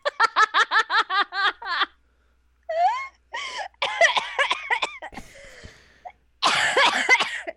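A rapid run of about eight sharp coughs, close and loud, followed by wheezy laughter and a few more coughing bursts mixed with giggles, with no talking.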